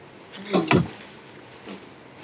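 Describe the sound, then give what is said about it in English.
A door swings and bangs shut, a couple of solid thumps with a brief rattle, followed by quiet with faint background noise. “I shake my head and slam the door shut.”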